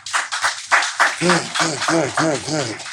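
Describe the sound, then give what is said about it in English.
A crowd claps in a dense, noisy patter, and after a second several voices rise into repeated whooping cheers that carry over the continuing applause. “So give yourselves a round of applause for being here.”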